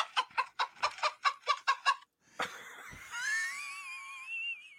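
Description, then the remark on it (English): Chickens cluck in a quick run of about eight evenly spaced clucks, followed by a louder drawn-out squawk with a wavering, whiny tone. No voices are heard. “Hey, John, did you tuck the chickens in?”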